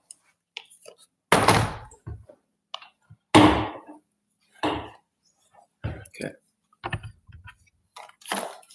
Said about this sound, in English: Let's move the chair here a little bit.